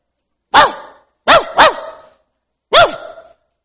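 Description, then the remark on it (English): A person imitates a poodle's yappy barking: four sharp barks in an uneven rhythm, two of them in quick succession, with brief silences between. “That's my poodle imitation.”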